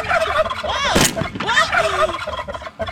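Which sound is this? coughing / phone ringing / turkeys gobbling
turkeys gobbling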